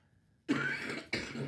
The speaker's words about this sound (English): Same cough, dude.